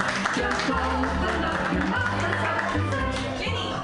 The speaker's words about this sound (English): Put your hands together, everybody, and clap them wildly